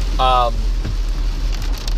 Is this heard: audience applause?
no